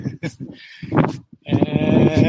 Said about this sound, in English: These two are our new goats that... Hello. Say hello. Say hi. Say hi. What you doing?